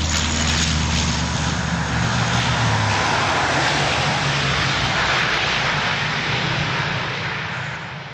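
airplane passing overhead

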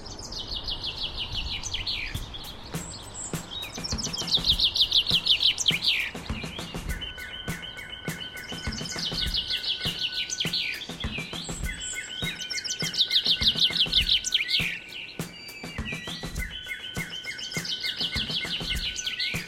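bird call

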